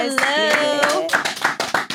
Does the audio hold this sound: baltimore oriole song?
no